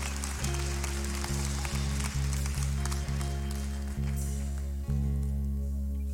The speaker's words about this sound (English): You ought to clap. You ain't clapped all day. You might as well clap right there. You hadn't clapped? None.